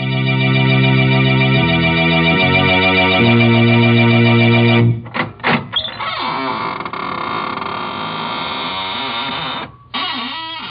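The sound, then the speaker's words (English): A sustained organ chord gives way to the squeaking door of the Inner Sanctum Mysteries radio show creaking slowly open, a loud, drawn-out groaning whose pitch wavers for several seconds before cutting off. No one speaks. “This is Raymond, your host at the squeaking door.”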